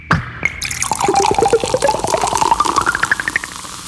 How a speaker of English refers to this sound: you probably know her sonic logos, especially if you were watching commercials in the late 70s or early 80s. Coca-Cola Pop and Pour.